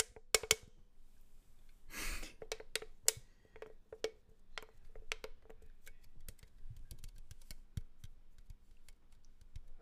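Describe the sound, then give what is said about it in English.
A can is tapped and handled, giving a run of sharp, irregular metallic clicks with a brief scraping rustle early on, then lighter taps continuing throughout. No one speaks. “Alright, now we've got some can noises.”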